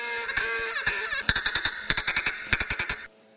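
A duck quacks rapidly and loudly, a nasal, buzzy chatter that breaks into a quick run of about a dozen sharp quacks before stopping abruptly.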